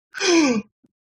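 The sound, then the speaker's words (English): A single voiced gasp rises sharply and then slides downward in pitch over about half a second, followed by brief silence and a faint click. “I want you to imagine the collective gasp as this part was read.”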